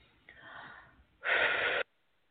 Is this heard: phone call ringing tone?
no